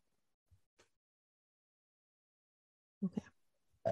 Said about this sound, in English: Excuse me. I don't care. I've already burped twice. I should have burped straight into the mic.